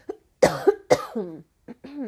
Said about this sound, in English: I got to cough again. One moment.